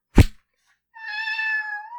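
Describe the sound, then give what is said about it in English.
A sharp thump opens, then after a brief pause a single drawn-out meow from a stray cat in a town rises clear, holding steady for about a second with no one speaking. “You know, there are a surprising number of stray cats in this town.”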